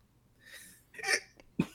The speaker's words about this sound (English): I hardly ever hiccup. And you know what? If I have the hiccups for too long, I'll start throwing up.